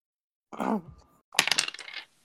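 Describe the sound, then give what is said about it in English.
Dice clatter and rattle across a table in a quick burst lasting under a second, fairly loud, just after a brief voiced sound; the dice are rolled for attack damage in a game. “I gotta roll dice.”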